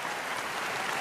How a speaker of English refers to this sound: The applause, the live studio audience is going to give it an applause here.